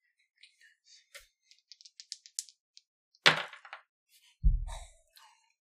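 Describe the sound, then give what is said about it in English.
Dice rattle and clatter across a hard table as a player rolls with advantage in a tabletop role-playing game, a string of small sharp clicks followed by a louder burst and a dull thud, with no talking. “It's now your turn to roll. You get to roll with advantage.”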